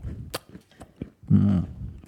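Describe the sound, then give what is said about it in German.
Crunchy chewing of a cookie with a few sharp bites and crackles, then a louder stretch of munching with the mouth working the food, with no talking. “Ja, warte, ich will noch einen Cookie essen.”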